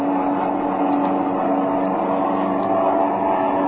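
An airplane engine, being throttled as the pilot pulls closer alongside another plane in flight, drones steadily and loudly from start to finish, a dense, unbroken roar with a low hum beneath it and no voices.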